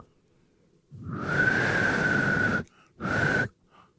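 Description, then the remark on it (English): A breathy, airy blow with only a faint thin tone inside it, like a failed try at whistling, followed by a second shorter puff of air. Fairly loud, no talking. “You don't know how to whistle?”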